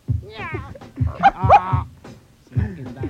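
A cat meows several times in drawn-out, wavering cries, loud and close, while deep thumping pulses repeat beneath at a steady rhythm.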